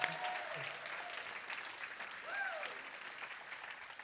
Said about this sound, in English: We'll give them a big round of applause.